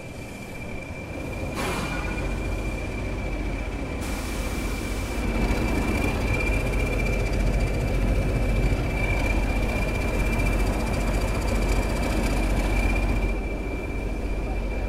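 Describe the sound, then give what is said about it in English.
A diesel locomotive rumbles steadily through Ropley Station at low pitch, moving to connect up with a steam locomotive. Its engine drone holds for the whole stretch, with a thin high whine running above and a brief burst of hiss early on. “Diesel locomotive is now moving through Ropley Station to connect up with another steam locomotive.”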